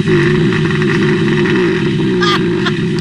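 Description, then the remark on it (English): Five bears snoring while hibernating underneath a house: a loud, steady, rumbling drone of overlapping snores, deep and buzzy throughout, with a brief whistly squeak near the end. “they went under the house to notice that 5 bears were hibernating underneath the house because they're hearing snoring”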